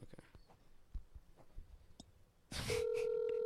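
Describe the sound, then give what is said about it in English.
After a stretch of quiet shuffling and faint clicks, a phone call's steady electronic ringing tone comes through a speaker, starting loud and sustained near the end. No one talks. “We can hear it ringing.”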